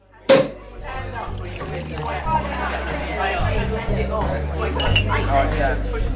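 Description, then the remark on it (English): A bright glassy clink rings out right at the start, followed by the murmur of several people chatting with scattered clinks of glasses and tableware throughout, like a festive toast. “Oh, yeah, we're going to have to, I'll in this space, I will insert the noise. It was all clinking glasses as though we were really together.”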